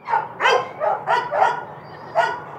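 Several adoption dogs in outdoor concrete-floored kennels bark in a quick, uneven volley of about six loud barks with slightly different pitches, calling over one another, led by Bellamy, a 2-year-old brindle mix on top of his doghouse; no voices present.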